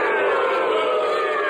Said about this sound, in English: Now the invisible ghosts are booing you